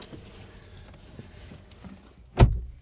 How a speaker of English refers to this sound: gets out of the car.